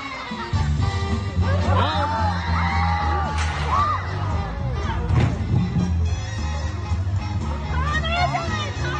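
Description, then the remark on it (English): A dense crowd murmurs and shouts continuously, with several sharp, rising voice cries cutting through the din, including a piercing yell midway and more excited whoops near the end. “One person screamed.”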